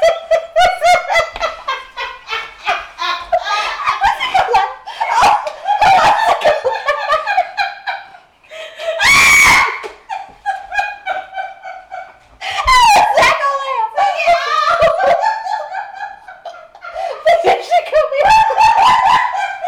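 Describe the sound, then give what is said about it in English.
A dog barks and howls in a loud run of yelping, pitch-sliding wails, with a harsher burst partway through and brief pauses between outbursts. “And fuck you too, fucking dog.”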